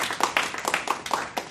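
A short burst of applause: brisk, close-up hand clapping in a quick, slightly uneven rhythm, like a small group clapping together, with no voices over it.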